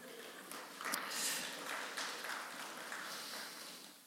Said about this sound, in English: That was like the worst round of applause, but it's okay. I get it. It's a holiday weekend. It felt like I was playing golf, but thank you very much.